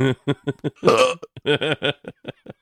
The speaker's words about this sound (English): The whole burping in the middle, like that he did in, uh-huh, in the Doc and Marty thing, yeah, that happened on accident while he was recording Doc's vocals.